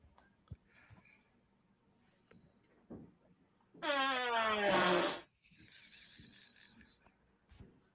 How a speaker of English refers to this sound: Was that the mom farting the whole time? This person, I'm assuming, is a dude. Right, but is it the other person that's doing the farting?